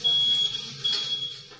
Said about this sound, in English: Ha! It took that long for the smoke alarm?